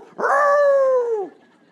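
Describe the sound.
A dog lets out one long, drawn-out bark, loud, with a steady tone that drops off at the end before going quiet.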